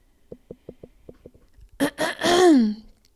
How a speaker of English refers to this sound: I need to clear my throat here, I guess. Hang on one sec.